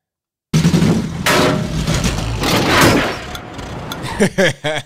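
A car with a wheel boot clamped on strains its engine and roars loudly under heavy mechanical clanking and banging, continuous for several seconds as it tries to drive off, then a short burst of rising and falling vocal sounds at the end.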